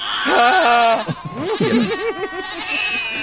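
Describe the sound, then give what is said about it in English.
Goats screaming loudly while springing up on their hind legs and waving their forelegs, several harsh, wavering bleats overlapping one another in quick succession with no pause, their pitch bending up and down throughout. “And then, while they're confused and off kilter from these little rolling balls of pink flesh, they all spring forth on their little hind legs, wave their forelegs in the air, and just scream.”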